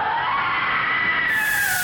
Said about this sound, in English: I was trying to find a way to make the Batman logo sound effect in a way that wasn't too copyright infringy, but I gave up and settled with a scream.